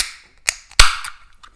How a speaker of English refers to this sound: That was a crisp can open